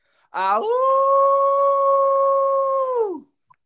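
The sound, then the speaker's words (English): A person imitates a wolf howl: one sustained, steady voiced tone of about three seconds that starts with a rough rising onset and falls off at the end, loud, with no other sounds. “So I need you to do your best Wolfpack howl.”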